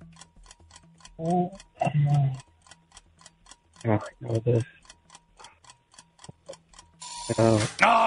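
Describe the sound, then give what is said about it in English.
A steady, regular ticking of a quiz question timer runs throughout, with bursts of voices talking over it, growing louder near the end. “There's the timer.”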